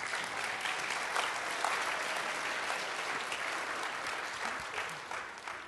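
Steady applause from an audience, a dense wash of many hands clapping at even loudness throughout, with no voices standing out.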